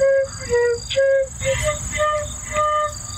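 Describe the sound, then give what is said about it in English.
A little girl from Virginia plays Mary Had a Little Lamb on her flute to cows, a slow run of clear, sustained mid-pitched notes, some repeated, over a low, rumbling background noise. “This adorable little lady from Virginia plays the kids' classic Mary Had a Little Lamb on her flute.”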